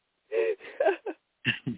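A voice imitates loud snoring: a few rough, breathy snorts in quick, uneven bursts, then a short pause before two more.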